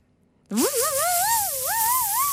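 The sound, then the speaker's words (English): After a brief silence, a voice imitates a dentist's drill with a loud, sustained high whine that swoops up and wavers in pitch for about two seconds. “Sound number two is a dentist's drill.”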